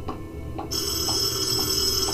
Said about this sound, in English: Phone's ringing. Where's the phone?